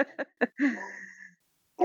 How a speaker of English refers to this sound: Oh, we've got the dog right on cue. Don't think he's happy about it.